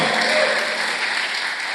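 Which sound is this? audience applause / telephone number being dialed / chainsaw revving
audience applause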